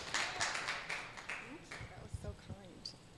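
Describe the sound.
A short burst of quiet audience clapping, a spattering of hands that fades within a couple of seconds as voices start talking over it.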